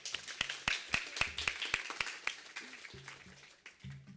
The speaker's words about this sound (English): Let's give Paula and Martha a huge round of applause